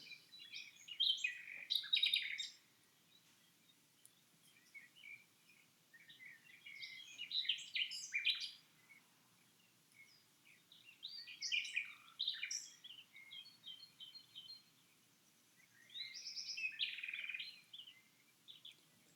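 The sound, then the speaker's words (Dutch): Birds in the trees chirp and sing in four separate bursts, each a flurry of high, bright notes lasting a couple of seconds, with quiet pauses between, over a faint, low background hush. “neem nog een moment om te luisteren naar de wind in de bomen en het geluid van de vogels.”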